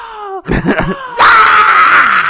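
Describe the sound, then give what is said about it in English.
A voice imitates a man in hospital who wakes, grabs the stump of his lost arm and screams hysterically: a falling wail and a few choked, gasping bursts, then a loud, strained, sustained scream held until the end, unaccompanied. “He just reached over and felt his ghost arm, grabbed his stub, and just hysterically started screaming.”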